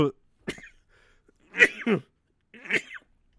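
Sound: repeated sneezing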